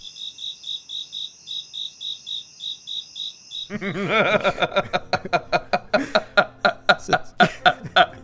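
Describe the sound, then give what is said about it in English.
Crickets chirp in a steady, evenly spaced rhythm against near silence for a few seconds, then loud, rhythmic vocal bursts abruptly take over and fill the rest. “Hey, this is where you're putting the crickets.”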